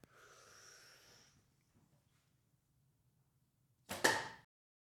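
An arrow fired through a living room at a ranch in Tennessee whistles briefly through the air with a thin, airy whine, then after a few quiet seconds a loud, sharp thwack rings out as it strikes something. No one speaks.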